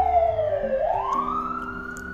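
A loud emergency vehicle siren wails, its pitch dipping and then sweeping back up into a sustained high tone, with faint traffic rumble underneath and no talking.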